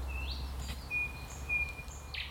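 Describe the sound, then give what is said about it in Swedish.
A bird gives a rapid, continuous rattling trill, steady and sustained like a machine gun, with a few brief chirps over a quiet outdoor background and a low hum, on a warm, windless 25-degree day by clear, cold water, heard while paddling. “Jag vet inte vad det är för fågel som låter som en kulspruta, men det är fantastiskt vackert.”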